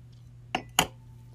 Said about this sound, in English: As a matter of fact, let me go ahead and take a quick sip of this red wine. First of all, let me say cheers. Uh-huh. And hold up. Let me take a quick sip.